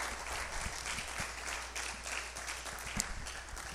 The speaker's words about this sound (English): That's what our God does, church. That's what our God does. You can give our God a hand clap.